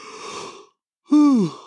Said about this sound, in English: Man, the yawns are coming in heavy, dude.